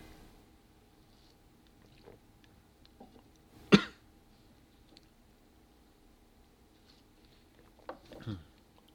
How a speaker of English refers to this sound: Actually, hold on. I want to get a sip off of my water here.